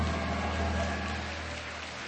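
Steady, dense applause from a crowd for the person presenting the winner's envelope at a winner announcement, a continuous crackle of many hands clapping at an even level for about two seconds, with no voices over it.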